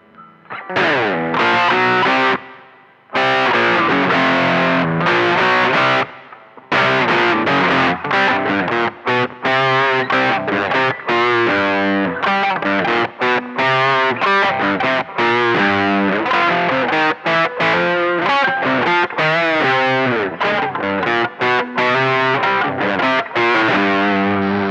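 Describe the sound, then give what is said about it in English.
The opening riff of a rock song: a loud, distorted electric guitar plays dense harmonic chords and driving rhythmic stabs, with brief gaps near the start before settling into a steady, saturated groove with no voices. “Let's start with the first riff of the first song.”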